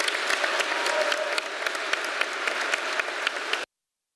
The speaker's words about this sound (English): So I'm going to invite you to stand. Why don't we give these baptism candidates another round of applause? What a joy.